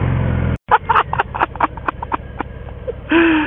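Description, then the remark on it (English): The engine of a motorcycle with a big, wide, fat tire, being ridden, rumbles low and steady, cuts out briefly, then chugs and pops unevenly before surging back into a loud, rough rev. “If a motorcycle can bring a smile to your face this big, then there's definitely nothing wrong with it.”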